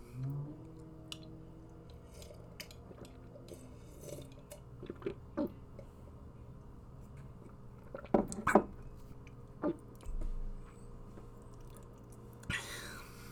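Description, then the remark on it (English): Quiet sipping of a warm glass of milk in bed: a few soft wet slurps and small mouth clicks, clustered near the middle, over a low steady hum with faint breathy whispering. “Are you almost finished with your warm glass of milk? I'm gonna go for one last sip.”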